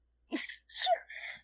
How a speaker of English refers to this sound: Sorry. Whose adorable sneezes were those? It was me.